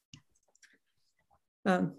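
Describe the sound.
Several soft, irregular keyboard taps click quietly, then a voice starts speaking loudly at the end.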